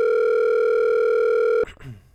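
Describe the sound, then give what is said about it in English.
A loud, steady electronic telephone tone of an unanswered outgoing phone call hums without a break for about a second and a half, then cuts off abruptly, leaving a short burst of rustling noise. “I'd like someone to answer the phone.”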